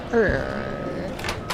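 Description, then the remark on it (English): A voice imitates a creaking door swinging open: a short, drawn-out squeak that slides downward in pitch, then a thinner held tone fades out, followed by a couple of soft breathy noises. “I'm gonna swing the door open.”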